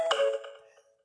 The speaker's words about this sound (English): One of those little notifications pops up. I'm like, ah!